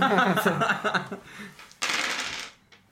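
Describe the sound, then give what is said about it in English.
Busy rattling of several dice shaken together, followed by a sharp burst of clattering as they tumble across a table and settle within about a second. “I'm gonna roll half and half.”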